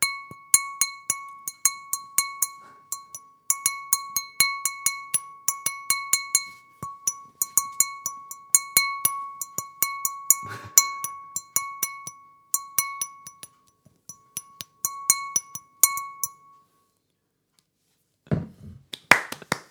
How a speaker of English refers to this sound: Well, mine was to see if I could recreate the Match of the Day theme tune on a humble pint glass, and, well, let's see if you can work out how well I did.